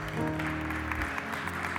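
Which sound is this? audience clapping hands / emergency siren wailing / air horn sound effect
audience clapping hands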